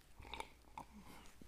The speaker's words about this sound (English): Oh, sip for cinematic pause of the reflection of what I just said. Double sip.